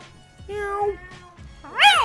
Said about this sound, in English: We're here with some crazy cats. Meow.